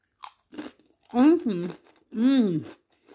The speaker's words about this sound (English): Just nice, crunchy. Not when I say crunchy, I mean crunchier than normal tortilla chips. The flavour is so good. They're gluten-free, vegan, high in fibre, and nice.